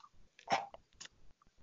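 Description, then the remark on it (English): A voice imitates wet, open-mouthed lip-smacking of someone eating a banana dipped in Nutella: a few short, moist smacks and clicks, one louder and breathier than the rest, with faint mouth noises between them. “you know like the moist sound when you when your mouth like smacking your lips?”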